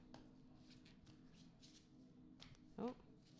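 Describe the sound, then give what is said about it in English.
A deck of cards is shuffled in a run of soft, papery riffles and rustles, ending with a brief vocal murmur near the end. “Kind of a weird shuffling for me.”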